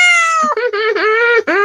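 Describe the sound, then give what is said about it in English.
A cat lets out a loud, drawn-out yowl, wavering in pitch and broken by a few brief catches before trailing off, with no other sounds around it. “Because if I'm purring, I'm happy.”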